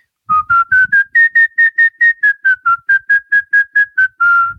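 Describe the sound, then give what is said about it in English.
A person whistles a quick melody of about fifteen short, evenly spaced notes that rise and dip in pitch, clear, ending on a longer held note, imitating the mandolin line at the very end of a song. “That's the notes. I'm trying to whistle it. But it's a mandolin, I think.”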